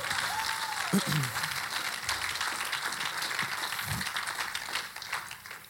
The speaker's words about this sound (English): Come on, that's worth clapping.